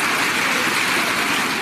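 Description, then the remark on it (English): A crowd cheers loudly and steadily at a speech line about respecting law enforcement and prosecuting criminals, a dense wash of many voices roaring together without letting up, with no single voice standing out. “A lot of people cheering that law enforcement is respected and criminals are prosecuted.”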